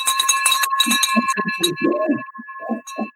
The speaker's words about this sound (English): Here we go. Ring that bell.